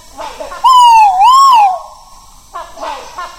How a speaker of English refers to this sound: I wasn't expecting this noise, but this was such an amazing experience. I'd got rhinoceros hornbills in a tree above my head, and I'd got an Argus pheasant standing behind me, and both were calling.